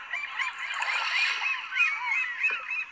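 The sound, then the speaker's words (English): A noisy flock of seagulls calling over one another, with harsh, overlapping cries that keep going for the whole few seconds at a steady, fairly loud level. No voices. “This is what a seagull sounds like.”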